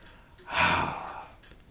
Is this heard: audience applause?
no